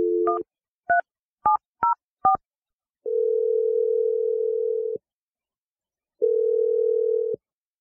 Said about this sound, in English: Okay, I'm dialing it now. I'm so excited for you. Here we go.